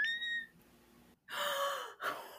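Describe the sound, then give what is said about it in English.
A very high-pitched cat meow, a short thin tonal cry, followed after a pause by two loud breathy, gasp-like bursts. No one speaks. “That was the highest pitch meow I've ever heard in my life.”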